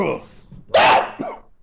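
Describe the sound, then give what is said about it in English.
A person with something in their throat gives one loud, harsh, dog-like barking cough while clearing their throat, followed by a smaller rasp. A brief voiced sound comes just before it. “that sounded like a dog.”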